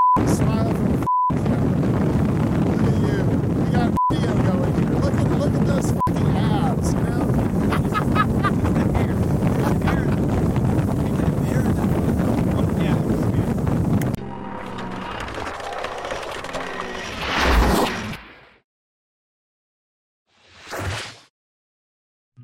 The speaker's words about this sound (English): Well, they're letting me drive a boat. It's probably not safe. But since Australia, no one cares. You do whatever you want.